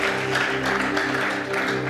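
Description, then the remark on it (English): An audience claps together as a clap offering to the Lord, a dense, steady wash of applause lasting a couple of seconds, with sustained low musical tones humming underneath. “And give the Lord a good clap offering, someone.”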